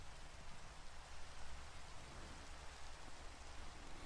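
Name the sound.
rain falling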